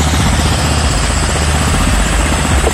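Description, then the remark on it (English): A rotating two-propeller frost protection fan across Vineyard Drive, on the other side of a fence, drones loudly and steadily, a deep engine rumble with rhythmic low thumping like helicopter blades, and no voices. “Well, you have these like two propeller frost protection fans. It basically sounds like a helicopter. I mean, they are loud.”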